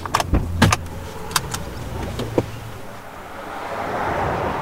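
Clunks and clicks of people getting into a car in Connecticut to travel from the 8 Mile's western branch to its eastern side, doors shutting with a brief jingle of keys, then a steady engine and road hum gradually builds.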